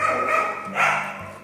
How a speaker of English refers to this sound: And that's one of our four dogs, Micaiah, a little girl dog that we have. It's barking.